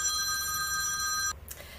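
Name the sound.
telephone ringing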